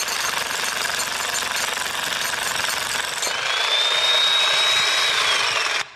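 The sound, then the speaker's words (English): A jackhammer pounds steadily and loudly, a dense rattling roar of breaking stone that runs without pause for several seconds before stopping abruptly. No one speaks. “When most of our language is about criticizing or correcting people, it's like a jackhammer, and we are cutting down people, breaking their hearts.”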